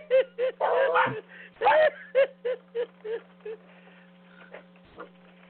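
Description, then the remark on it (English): A dog barks excitedly at a woman who has been gone all day, in a rapid string of about a dozen sharp yaps, loud at first and gradually tapering off, over a steady low electrical hum. “We got us the dog. My mother's been gone all day, and the dog's trying to kill her.”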